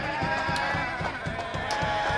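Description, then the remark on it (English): A grown man imitates a goat with a continuous, quavering bleat, a steady rapid wobble throughout, loud, with no other talking. “And it's why we have to sit here and listen to more grown-ass men make goat sounds.”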